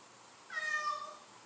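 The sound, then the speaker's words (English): One drawn-out cat meow with a clear, slightly bending pitch, lasting about half a second against a faint background hiss, with no talking. “Pretty kitty.”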